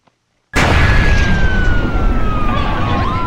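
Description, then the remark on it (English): After a moment of silence, the first of the terrorists' suicide-vest bombs explodes in a building's emergency stairwell with a sudden, loud blast that gives way to a sustained roaring rumble, while a steady siren-like wail slowly drifts downward in pitch. “And that's when I heard the first bomb explode.”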